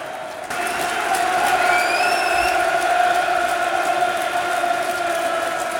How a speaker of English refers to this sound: There we are, Joe being introduced to the crowd. Could be another high crowd.